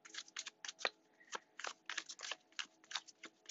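Steady, brisk shuffling of a Taramucha tarot deck, a run of papery riffles and soft flicks repeating in quick bursts with no talking.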